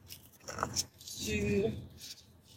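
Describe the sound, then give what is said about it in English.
A deck of cards is shuffled for a card reading of messages for Virgo, in two quick rustling bursts, a short papery flutter and then a longer riffle, with a soft murmuring voice underneath. “Let me shuffle this two more times.”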